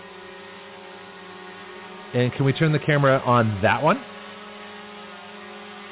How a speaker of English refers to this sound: There it goes. So it's flying. It's actually, we have a drone flying in the studio right now.